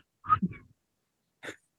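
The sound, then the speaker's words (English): A failed attempt at whistling: a short, breathy, sputtering burst of air with only a flicker of tone, followed after a pause by another brief puff of breath. No one speaks. “I didn't fart. I whistled.”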